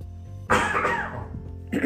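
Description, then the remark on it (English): A loud cough bursts out after a brief hum, trailing into a rough, raspy exhale before a second short cough at the end. No one speaks. “Excuse me while I take a cough.”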